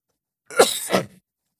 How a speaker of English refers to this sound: I'm sorry, there's going to be a lot of coughing. I'm not going to mute it out. I'm not going to edit this out. It is just my life these days.